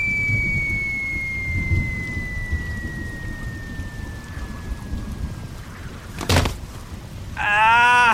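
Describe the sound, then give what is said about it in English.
Steady rain pours down with a dense low rumble of thunder throughout, a sharp crack near the end, and a rising whooshing tone sweeping in at the close; no one speaks. “Does the rain make you big again?”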